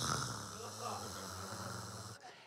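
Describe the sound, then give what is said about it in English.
A person imitates a sleeping man's loud, purring snore with their voice: a steady, low rattling drone that holds for about two seconds, then abruptly stops. “He fell asleep, and he snores really loud.”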